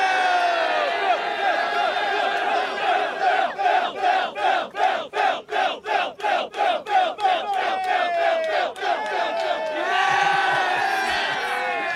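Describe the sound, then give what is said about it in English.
A large wrestling crowd booing and jeering Jeff Jarrett loudly as Jeff Jarrett and Jay Lethal take on FTR, swelling into a rhythmic chant of short repeated bursts in the middle before breaking back into sustained mass shouting. “Why are we booing?”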